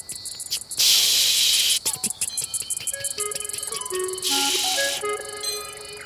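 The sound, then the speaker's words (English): Australian cicadas call in loud bursts of dense, high-pitched buzzing hiss, broken by brief pauses and overlaid with shorter rattling pulses and a few higher tonal chirps. No one speaks. “Thanks to scientist Lindsay, who sent me these recordings of cicadas that you just heard.”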